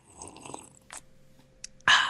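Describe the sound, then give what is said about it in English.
Someone takes a sip of hot coffee from a mug: a few soft wet mouth sounds and a brief airy draw, then a louder hissing slurp at the end. “I have a mug of coffee here for our morning podcast listeners, so I'm going to have a sip of that.”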